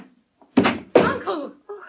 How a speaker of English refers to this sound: Someone's opening the door.